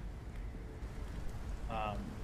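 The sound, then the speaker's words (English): Steady rain patters on the ground in a continuous, soft hiss over a low rumble, with a brief tonal sound rising near the end. “Rain is pattering on the ground around you.”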